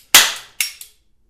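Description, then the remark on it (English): Three sharp pops from a much-used cap gun with hard water stains: a loud crack followed by two quicker, fainter snaps, each bright and crackly with a short decaying tail, and no voices. “The gun still works, although it looks like it's got like hard water stains on it now.”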